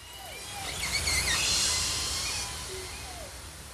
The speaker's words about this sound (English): Here are some orcas that were recorded in the Salish Sea.